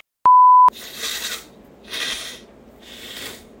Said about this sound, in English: Ew, why are you blowing your nose while you're talking to them? Is that how much respect you have?